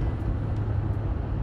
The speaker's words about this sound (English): I'm driving down the highway, pulling a boat, and doing today's program from the front seat of the old F-250 pickup truck.